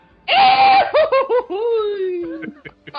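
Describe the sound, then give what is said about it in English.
The voice actor of Goofy vocally imitates the Wilhelm scream, stepping away from the microphone: a loud, high sustained yell that breaks into a few choppy gasps, then slides down into a long falling wail, heard alone. “Can you do the Wilhelm scream?”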